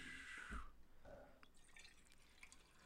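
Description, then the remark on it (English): A drink pours into a glass in a short trickling stream, then tapers off into a few soft drips and splashes. Quiet, with no voices. “I can hear that. It sounds like a pee.”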